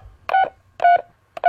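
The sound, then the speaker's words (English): Three touch-tone beeps from an old studio telephone keypad dialing a turkey-cooking help line, each a short, clear electronic tone about half a second apart, fairly loud, with no voices. “And it just got going again yesterday for the 40th year, and we're going to give it a call right now.”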